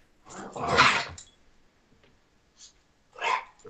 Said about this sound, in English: sorry, I have dogs.